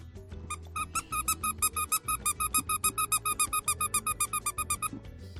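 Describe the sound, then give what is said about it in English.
A dog's squeaky toy is squeaked by hand into a microphone, rapidly over and over, about twenty high, bright squeaks in a steady rhythm, fairly loud with no talking. “And here's a dog toy.”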